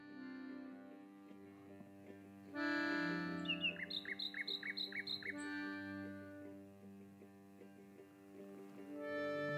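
A nightingale sings, with rich sustained whistles broken by a quick run of about a dozen sharp, repeated chirps, then trailing into softer phrases.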